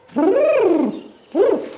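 pigeon cooing

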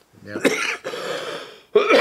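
cough

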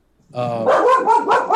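dog barking

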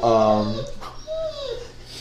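dog whining

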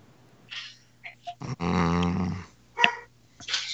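dog growling and barking

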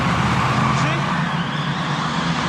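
car driving off

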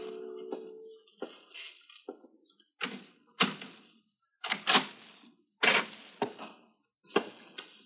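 someone

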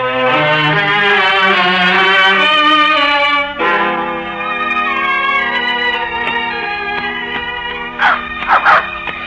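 dog barking and whimpering

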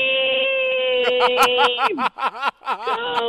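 woman screaming

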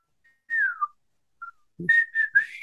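person whistling

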